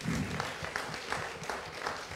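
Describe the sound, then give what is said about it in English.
An audience applauds a man steadily, many hands clapping at once in a dense, continuous patter that stays fairly loud throughout, with a faint murmur of voices beneath. “Every one of us, thank you, God bless you, clap for him.”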